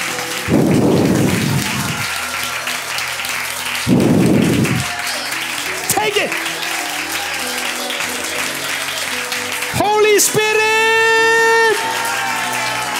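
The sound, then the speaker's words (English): An audience at a Christian prayer gathering, told to clap their hands and speak in tongues for 30 seconds, claps continuously in a dense, steady wash of hand claps, with louder low surges near the start and brief rising vocal-like tones cutting through later on. “30 seconds, clap your hands and speak in tongues.”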